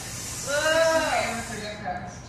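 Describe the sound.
An audience at a city council vote hisses in disapproval, a steady breathy hiss that swells and fades over a couple of seconds, with a voice briefly rising above it partway through.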